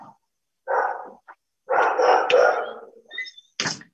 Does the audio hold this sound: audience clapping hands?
no